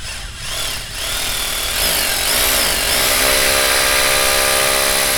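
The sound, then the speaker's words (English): Loud power tools grind and whine against metal as blast doors are taken apart to open them, their pitch sweeping up and wavering before settling into a steady, harsh drone with a constant hiss, with no voices. “Well, these blast doors weren't exactly made to be taken apart. We're going as fast as we can.”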